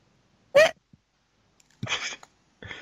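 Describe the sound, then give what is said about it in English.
A sharp, high hiccup-like squeak, followed after a pause by two more breathy, voiced yelps, fairly loud with silence between them. “Hiccup or squeak of terror at rolling again.”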